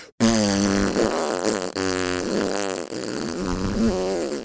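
A loud, continuous buzzy farting noise, apparently made by mouth, drones on for several seconds with a couple of brief breaks and wavering pitch, close up with no talking.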